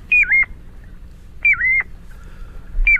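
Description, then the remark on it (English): A piping plover calls three times, clear, mellow whistled notes spaced evenly about a second and a half apart, each a short rising-then-falling peep, heard alone over a faint background hiss. “It's the piping plover.”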